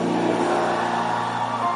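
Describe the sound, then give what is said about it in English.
An audience claps and screams together in response to a preacher's call, in a loud, continuous roar of cheering and applause, with steady low sustained tones running underneath throughout. “Clap your hands and scream like you can.”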